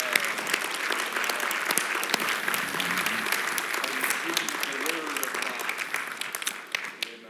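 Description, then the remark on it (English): An audience claps hands to the Lord one morning in a steady, dense burst of applause lasting several seconds, with faint murmuring voices mixed underneath the clapping. “Can we clap our hands to the Lord this morning?”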